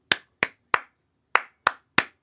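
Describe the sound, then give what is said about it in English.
Six sharp hand claps in two groups of three, a quick even triplet, a short pause, then another matching triplet, clapping back the syllables of the phrase "kangaroo water park" in a clap-back rhythm game. “For round one, I will say some words, and your job is to clap back the rhythm of the words that I say.”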